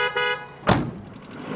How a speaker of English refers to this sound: They were taking lots of luggage with them, so Mummy called a taxi to drive them to the station.